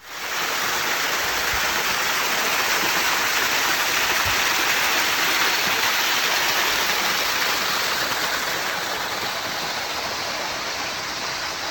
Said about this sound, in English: I found this hidden little pool of water that actually had quite a small dam blocking it